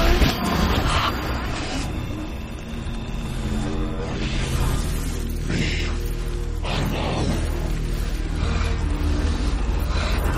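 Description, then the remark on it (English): A clip whose captions called it alien language, played backward steadily for about ten seconds: a dense, smeared wash of tones and warped voice-like sounds that swell in and cut off abruptly, with no intelligible words. “However, our buddy Robin had an excellent idea ahead of recording tonight and said, hey, why don't you roll that backward and see what happens?”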